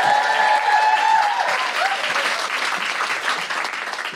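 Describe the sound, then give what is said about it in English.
A stand-up comedy audience bursts into loud, sustained applause with whoops and cheers as comedian Felicity Ward is welcomed to the stage, a dense clatter of clapping that stays strong throughout, with a few high shouts rising above it early on. “I went to cheer then, and then I thought, no, I might piss myself. So I didn't clap myself on.”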